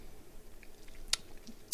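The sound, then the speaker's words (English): Quiet wet mouth sounds of a man sucking on a hard xylitol lollipop made with isomalt syrup, red beet juice and stevia, with two sharp clicks as it knocks against the teeth, and no talking. “I like lollipops, but I've never seen a grown man suck on them on camera. Like, oh yeah, it's Xylitol.”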